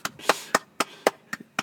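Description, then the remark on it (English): A folder slapped against a desk several times in quick succession, about seven sharp, flat smacks at a fairly steady rhythm, with no voices. “It's a folder I slapped on the desk.”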